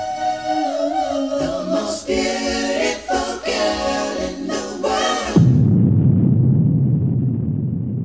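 Tonal music plays for several seconds, then cuts abruptly to a loud, sustained low rumble of thunder, a storm sound effect that carries on steadily to the end.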